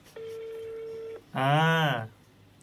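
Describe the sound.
A steady, even telephone tone holds for about a second as a phone call is placed again, then stops. A short, loud voiced sound with a rising and falling pitch follows right after.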